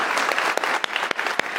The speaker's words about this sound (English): Would you be willing to stand up? And can we clap for them? Would you stand up? We want to recognize you and thank you.